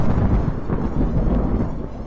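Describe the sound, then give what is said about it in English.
A deep, rolling rumble of thunder fills the whole moment, heavy and steady with a low growl that never fully drops away. No voices are heard. “The lightning illuminated my way up the stairs, as each step brought me closer to my canvas.”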